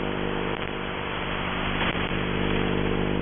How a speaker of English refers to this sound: Now you can barely hear the scream now in the background. A lot of interference here, too. It's like scratching and warbling. There it is again.